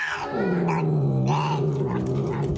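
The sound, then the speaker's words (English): A cat growls fiercely and loudly, a sustained low guttural snarl with rising yowling tones, like an angry cat warning off a rival. No one speaks over it. “Sounds like a mountain lion.”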